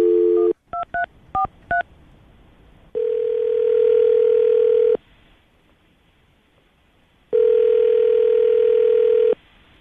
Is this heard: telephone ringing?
yes